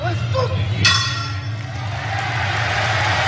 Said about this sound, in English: Before we get anything started here, we got to do the gimmick of the show and start the 60-minute time limit. And we got to do that by having Red Shoes ring the bell.